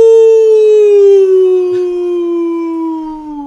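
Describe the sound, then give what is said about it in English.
A single long, loud howl, with a person imitating an animal outdoors at 8 p.m., as in the Facebook group Go Outside and Howl at 8 p.m., holding a steady tone that slowly glides downward for several seconds without a break. “But essentially, you go outside at 8 p.m. every day, and you just howl like an animal.”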